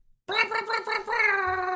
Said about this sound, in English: It's an air horn underwater.